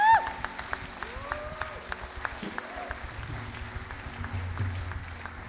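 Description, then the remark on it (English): A church audience applauds to celebrate four people giving their lives to the Lord that morning, with steady, dense clapping for several seconds, a few voices cheering and calling out over it and low musical tones underneath. “Let's give a round of applause. Let's celebrate.”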